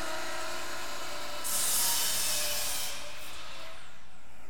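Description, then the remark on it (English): A power tool whirs up into a bright, hissing high-pitched whine for about a second and a half, then winds down, leaving a steady low mechanical hum. No one speaks. “Aren't power tools awesome?”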